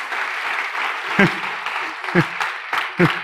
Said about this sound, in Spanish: Un aplauso a las personas del equipo de parqueo que están ahí toda la semana.